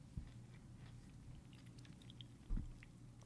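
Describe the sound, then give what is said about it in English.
Quiet chewing of a hard, dry Italian cookie: soft crunchy crackles and wet mouth sounds, with two heavier bites standing out near the start and end. No one speaks. “So, Italian cookies are very dry and hard, and they're hard to chew.”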